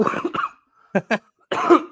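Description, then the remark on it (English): A person clears their throat several times in quick, harsh bursts, fairly loud, with a couple of short gravelly coughs separated by brief pauses and no speech. “We're going to start with me clearing my throat, I guess.”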